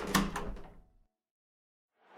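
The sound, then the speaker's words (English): A door bangs shut with a solid thud that rings out and fades over about a second, followed by silence and the start of another soft rustling sound. “Yeah, well, I think with your track record, it's best you sneak out the back door.”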